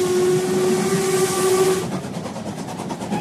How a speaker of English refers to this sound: This is the main engine room of the train. Sorry, you might think it's a bit loud, but this is the engine room. Also, these are sound effects. Actually, this is a bit too loud for my podcast.